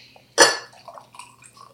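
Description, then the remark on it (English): A short, bright splash of liquid hitting a glass as shots are poured, followed by faint trickling and light glassy clinks, quiet, with no one speaking. “We should have poured these before.”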